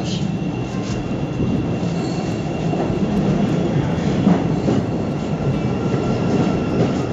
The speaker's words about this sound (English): As you can hear, the yellow line train to Skokie has just arrived. Sadly, not our train.